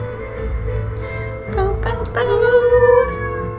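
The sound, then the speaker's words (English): A cat lets out a few drawn-out, wavering meows over steady background music, the cries rising and falling in pitch. “Even the cat is gonna sing along.”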